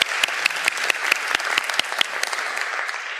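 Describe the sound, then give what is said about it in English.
An audience applauds a woman who has just lit a candle, a dense, steady patter of many hands clapping at an even loudness for the whole few seconds, with no voices over it. “Excellent. Give her another round of applause, folks.”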